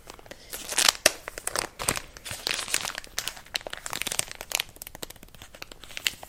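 Crinkly plastic packaging being torn and opened, with a steady run of irregular rustles, crunches and sharp crackles lasting several seconds and no voices.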